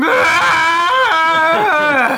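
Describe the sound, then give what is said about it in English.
A loud, drawn-out, strained human yell, rising and falling in pitch over about two seconds without pause, as a door at the back bursts open. “Well, speaking of that, at this time, the door bursts open in the back as you hear this enormous yell and a familiar figure standing in the door frame.”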